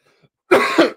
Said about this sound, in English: I couldn't get my coughs out in time, yo.